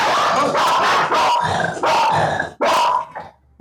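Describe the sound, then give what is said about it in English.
A dog in the room barks loudly, a run of five or six gruff, throaty barks in quick succession with brief gaps between them, and no one speaking. “The next time the dog stays out of the room.”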